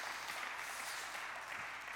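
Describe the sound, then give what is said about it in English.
A crowd claps steadily in dense, continuous applause for the team that served them after the singing, a bright crackling wash of many hands that holds at an even level for about two seconds with no voices. “Can we give a round of applause to the team for serving us so well?”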